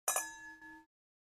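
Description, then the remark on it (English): Two quick metallic clinks of stainless steel wine glasses touching in a toast, followed by a brief bright ringing tone that fades within a second. No voices. “We are using our gorgeous stainless steel glasses that don't cheers great, but are very pretty.”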